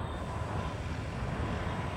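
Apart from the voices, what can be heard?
airplane flying overhead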